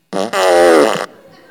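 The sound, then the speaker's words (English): A fart machine hidden in a wheelchair being pushed down a long hallway blares a loud, buzzy fart noise: a short burst, then a longer drawn-out blast that cuts off abruptly into near quiet. “And my grandfather and I thought it would be a great idea to stash the fart machine right in the wheelchair.”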